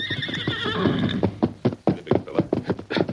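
horse neighing

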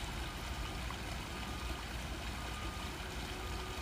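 trickling stream water

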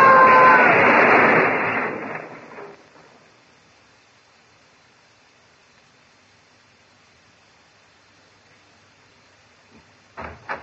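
car crash sound effect

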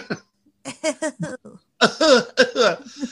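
man coughing

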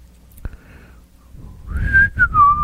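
person whistling a tune

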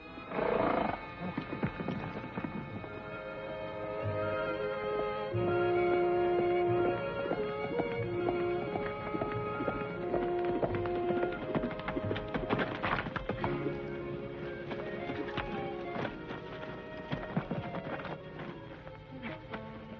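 horses galloping

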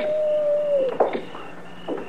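coyotes howling

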